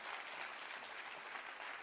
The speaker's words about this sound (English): Clap your hands for the blood tonight.